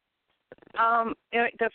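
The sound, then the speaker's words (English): A voice comes through a phone line in choppy, broken fragments, with stuttering bursts and sudden dropouts into silence, as though the connection is cutting in and out. “My phone was breaking up.”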